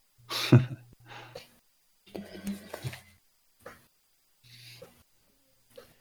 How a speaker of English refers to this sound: Oh my god. Violent coughing on my part. That's the best kind of coughing. I mean, it used to be more violent, but it's now just nonstop.